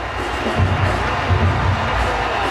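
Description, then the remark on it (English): A large arena crowd in Toronto gives Vince Carter a standing ovation after a video tribute on the big screen, cheering and applauding in a steady, dense roar that holds at a fairly even level throughout, with a few swells and no single voice standing out. “Vince Carter has received a standing ovation that has brought tears to his eyes.”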